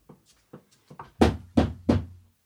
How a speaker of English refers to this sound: I just have to say, if somebody's hearing like a tap, tap, tap, tap, tap, that is a woodpecker. On the outside of your office. On the outside of my office, pecking away right as we're doing our podcast.